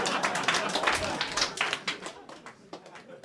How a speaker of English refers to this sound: Thank you for applauding. I put a lot of TLC into my jokes.